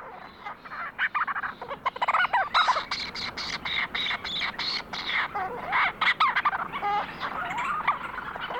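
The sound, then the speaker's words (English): A flock of Leach's storm petrels on Kent Island in the Bay of Fundy, recorded by Lang Elliott, calls continuously. It is a dense overlapping chatter of rapid, purring and chuckling notes, with sharper squeaky calls rising out of the busy chorus throughout. “Lang Elliott recorded this flock of Leach's storm petrels on Kent Island in the Bay of Fundy.”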